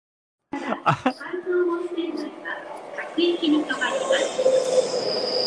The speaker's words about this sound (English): Who wants to hear a train arriving?